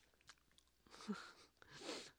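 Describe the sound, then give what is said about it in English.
Quiet mouth sounds of someone chewing crab-patty-shaped candy, with small wet clicks followed by two longer, breathy bursts like swallowing or gulping as the separated pieces are eaten in one gulp. No one speaks. “and ate the separated pieces in one gulp.”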